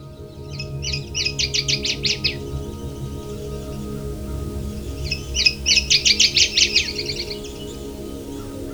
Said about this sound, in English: The northern water thrush is a small brown bird that may resemble a thrush and may even inhabit thrush habitat, but is really a warbler. It inhabits the bogs and wooded swamps of Canada and the northeastern United States.